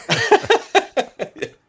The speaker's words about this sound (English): Got to be quick on that mute button when you got this cough going.